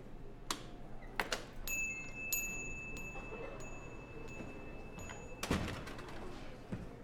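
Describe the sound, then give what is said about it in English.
A door opens with a few sharp clicks and knocks as a customer enters, a thin ringing tone hangs in the air for a few seconds, then a solid thump as it closes. No one speaks. “I think he's coming up to the door now.”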